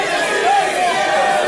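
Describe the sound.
A live audience shouts out made-up secret names all at once, the overlapping words blurring into a dense, loud jumble that holds steady for a brief burst.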